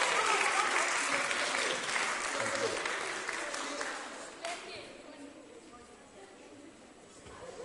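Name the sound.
audience applause and cheering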